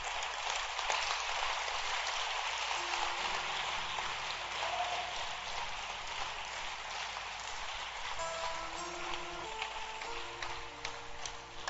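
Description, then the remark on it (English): An audience at Trinity Fire claps their hands for the pastors in a dense, steady wash of applause that holds at an even level for about twelve seconds, with faint sustained musical tones underneath and no talking. “Continue. Clap your hands.”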